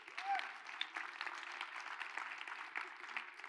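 A crowd claps steadily for a few seconds to celebrate someone's birthday, a dense, even patter of many hands at moderate volume with faint crowd murmur beneath.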